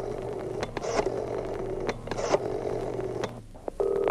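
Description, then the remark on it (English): A man in his office picks up his private telephone and dials as afternoon fades into evening: a steady dial tone hums while several quick clicking bursts from the dial come in bunches, then a brief ringing tone begins at the end. Fairly clear, with no talking. “With a sudden decision, he picks up his private phone and dials.”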